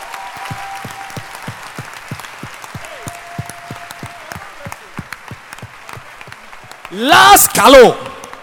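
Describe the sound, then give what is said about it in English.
An audience at a talk claps in a steady, rhythmic unison beat, about three claps per second, at the speaker's request before his last point, ending with a loud burst of cheering and shouting voices over the clapping. “Then clap your hands before I give you the last point.”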